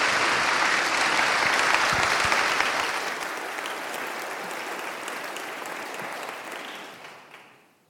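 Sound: audience applauding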